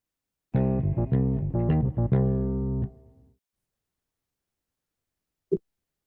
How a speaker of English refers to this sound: You'll hear the little jingle in a minute, and then we'll go into our second half